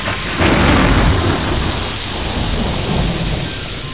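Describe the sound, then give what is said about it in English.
A great thunderstorm at Skara Brae, on an island in the north of Scotland, roars loud, steady heavy rain hissing over a deep rolling rumble of thunder that swells early and keeps growling throughout, with no voices. “Until about 150 years ago, there was a great storm.”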